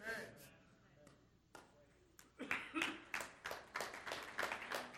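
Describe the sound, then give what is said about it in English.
Quiet, polite golf clapping: a handful of soft, scattered claps in a loose, steady rhythm, starting after a brief stretch of a man's voice and continuing to the end. “You're golf clapping.”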